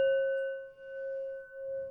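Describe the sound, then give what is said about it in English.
A gong rings out in a long, steady metallic hum, several bright overtones sustained evenly for the whole stretch with only slight swells in loudness and faint low rumbling beneath. “I don't know if any that can be heard, but I guess we might as well end on a gong, so.”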